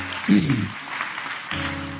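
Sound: audience clapping hands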